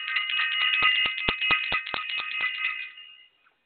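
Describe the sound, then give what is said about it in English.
A bell rings alone in a quick, steady run of about eight metallic strikes, its bright shimmering tone sustaining between hits before fading out at the end. “I have to ring the bell again.”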